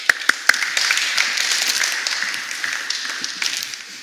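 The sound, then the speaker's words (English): A group in a church claps together, starting with a few sharp, separate claps that quickly swell into a steady, dense patter of applause lasting several seconds, with no one speaking. “Give her a clap.”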